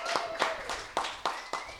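Brief, light audience applause: a handful of sharp, steady claps at an even rhythm, fairly sparse, as if only a few people are clapping, with a faint background tone underneath.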